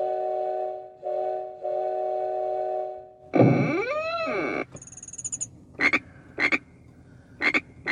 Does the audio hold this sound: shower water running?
no